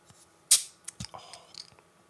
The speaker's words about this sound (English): Oh, nearly dropped my opener. Don't want to do that. A little bit of Foley. Glass bottle. Ready?